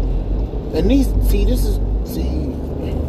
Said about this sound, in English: This is shit I'm talking about. These goddamn trucks.